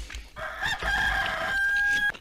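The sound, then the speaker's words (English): A rooster crows once, a loud, drawn-out cock-a-doodle-doo, its strained call holding steady for nearly two seconds before cutting off abruptly. “The chicken's coming to roost now, boy. I didn't mean to hit that.”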